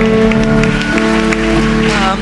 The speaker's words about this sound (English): Come on, people. Give Jesus a clap and praise God.